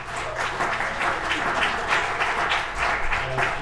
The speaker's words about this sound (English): Stand up for 1 second, and please give them a round of welcoming applause to them.